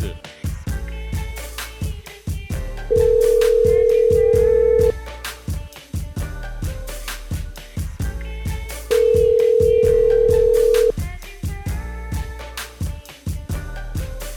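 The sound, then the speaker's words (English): An outgoing phone call rings through: two long, steady ringback tones about six seconds apart, clear and fairly loud over a busy music bed, with no one talking. “So it's a reasonable time to pry him away, get him on the phone.”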